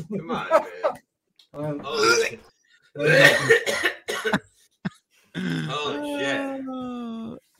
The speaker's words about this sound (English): coughing very hard. I think we got to play one more. I just took a hit of the pipe.